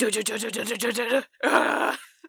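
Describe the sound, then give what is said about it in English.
A person vocally imitates a big squirrel's roar, a long yell: a fluttering, growly tone pulsing for about a second, then a short pause and a harsher, raspy burst, with no words spoken. “Big squirrel roar.”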